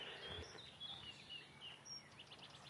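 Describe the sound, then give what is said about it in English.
Several wild birds chirp and call by Llangorse Lake over a steady outdoor hiss, short high tweets and trills scattered across a few seconds, fairly faint, with no voices. “So should hear a lot more, some interesting water birds, particularly migrant warblers.”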